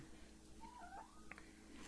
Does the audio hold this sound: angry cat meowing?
yes